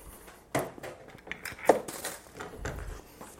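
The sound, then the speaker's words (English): Dishes and bowls clatter and clink during kitchen cleanup while a first batch of cookies bakes in the oven, bowls being put in the dishwasher, in a loose, irregular series of knocks and scrapes, with one sharper ringing clack standing out in the middle, no speech. “And normally while that first batch is cooking, excuse me, I do a little bit of cleanup.”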